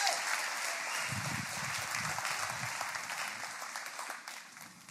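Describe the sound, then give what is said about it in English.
A crowd claps steadily in praise of the Lord, in dense, overlapping applause for about five seconds, with a few faint murmurs underneath, fading slightly toward the end. “Somebody give the Lord a hand clap of praise.”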